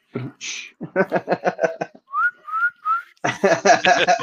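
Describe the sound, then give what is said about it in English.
A person whistles three short, clear rising notes, imitating the whistling of A&M stadium fans, between bursts of rhythmic vocal sounds and loud, rough voice before and after. “That's the only thing I hate more than the whistling.”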